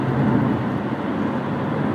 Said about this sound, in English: Pretty, yeah, traffic's moving like it should at this hour.